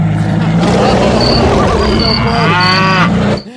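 animal, cow mooing

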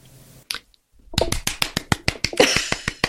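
human body sound, hand clapping

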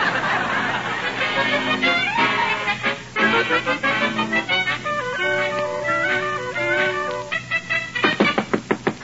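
household object, knocking on a door

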